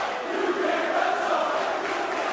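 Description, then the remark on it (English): A large ECW wrestling crowd chants "you can't wrestle" at John Cena in a steady, dense roar of many voices, loud and sustained throughout, with no single speaker standing out. “Cena, crowd chanting, you can't wrestle.”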